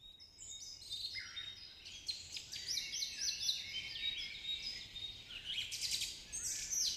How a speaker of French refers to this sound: Cette musique-là est reconnue, le bruit des oiseaux, pour calmer, hein? Rendre zen.